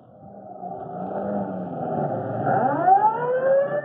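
A fire chief's car engine revs and accelerates as a siren rises and wails over it, the sound steadily growing louder, with no voices.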